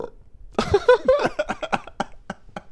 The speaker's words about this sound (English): Yep. A long belch later...